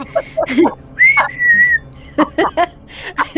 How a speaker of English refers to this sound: You know what that is? That's my Periscope. Somebody I'm following just popped onto Periscope.